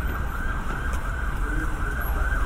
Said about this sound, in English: Oh, there's a siren.